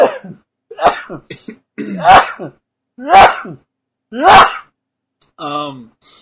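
Four or five sharp, explosive sneezes burst out in quick succession, loud, with short gaps between them, trailing off into a brief voiced groan.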